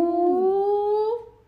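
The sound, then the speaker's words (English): A person imitates a monkey with one sustained, high-pitched voiced hoot that glides slightly upward and holds steady for about a second before trailing off. No speech accompanies it. “I was like, are you making monkey sounds?”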